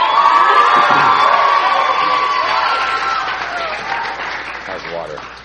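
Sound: crowd cheering and applauding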